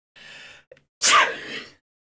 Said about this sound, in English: Oh God, I think I'm gonna sneeze.